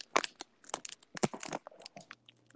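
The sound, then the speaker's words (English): A bag of hot Cheetos is crinkled and crunched, with dense, irregular bursts of crackling plastic and crushing snacks for a couple of seconds, no voices. “Keys. Nope, hot Cheetos.”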